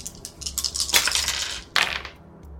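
Dice clatter across a hard tabletop in a quick series of sharp clicks, with a louder burst of rattling near the end before the sound settles into quiet; the roll comes up a 1.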